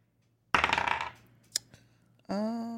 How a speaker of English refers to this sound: You know, you can roll to see if you can read his lips. This dice has been good to me today.